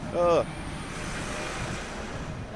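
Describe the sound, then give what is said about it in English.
A garbage truck (bin truck) rumbles steadily, a broad wash of engine and road noise that holds even throughout, after a brief voice at the very start. “It's another fucking bin truck.”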